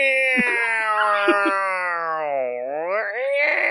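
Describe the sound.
A voice imitates an air raid siren with one long, loud, steady wail that slowly dips in pitch, then swoops back up and holds high for nearly four seconds.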